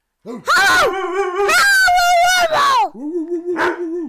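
A dog lets out loud, drawn-out howls mixed with barking yowls: a short rising cry, a long wavering howl, then a brief final yelp.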